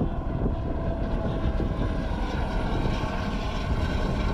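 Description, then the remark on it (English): A helicopter surveying the border roars steadily overhead, a loud, constant low engine and rotor rumble that fills the whole stretch with no break and no voices. “Helicopter surveying the border.”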